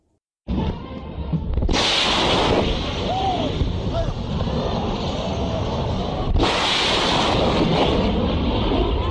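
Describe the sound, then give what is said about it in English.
Two loud, sharp booms of a sonic boom from a supersonic jet, several seconds apart, crack over a steady roaring rumble like wind buffeting the mic. No one speaks. “That was a sonic boom, the sound created by shock waves of an object traveling through air faster than the speed of sound.”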